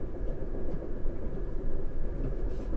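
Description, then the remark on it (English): A train travelling to Bournemouth rolls steadily along the rails, with a continuous low rumble and rattle at a fairly constant level, with no talking. “I prepared some reading for the train journey, a little book on UFO research.”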